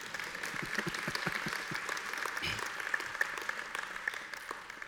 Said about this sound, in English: Praise God. You can clap, that'd be okay.